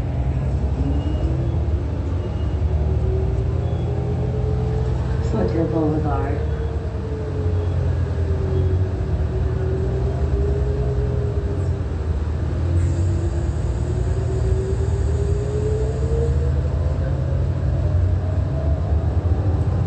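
A bus rumbles through street traffic at Foothill and Euclid Avenue in Upland, California, at 8:51 a.m., its loud, steady engine drone carrying a whining tone that rises and falls as it moves, with constant road noise throughout.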